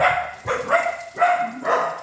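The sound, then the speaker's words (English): Several dogs bark in quick repeated bursts, about four loud yaps overlapping one another, with no talking. “Did you hear that? The dogs know.”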